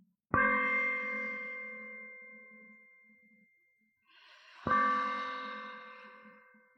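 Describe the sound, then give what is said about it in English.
A therapy gong used for guided breathing is tapped twice, a few seconds apart, each tap blooming into a clear, sustained ring that slowly fades. Resonant, with no talking. “So we tap the gong to breathe in, and we wait for the sound to stop.”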